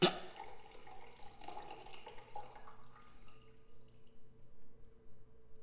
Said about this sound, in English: I was pouring myself another drink. I'm sorry.